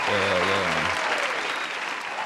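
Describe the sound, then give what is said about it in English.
A crowd applauds a man being welcomed, in a steady, dense wash of clapping that stays loud throughout, with a low voice briefly audible at the start before the clapping continues alone. “Big round of applause, man. Big round of applause.”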